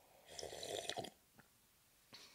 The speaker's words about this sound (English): Did you really just slurp?